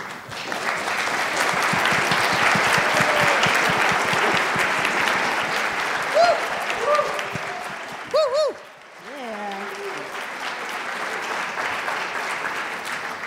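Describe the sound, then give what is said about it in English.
An audience gives a full round of applause to the artists and writers taking part in an art exhibition: dense steady clapping that dips briefly around the middle, with a few cheers and whoops rising above it before the clapping carries on. “So if any of the artists who are participating in the exhibition are here, or any of the writers are here, if you can please stand up, we just want to give you a round of applause.”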